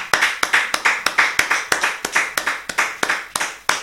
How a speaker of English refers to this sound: Someone give the Lord a clap.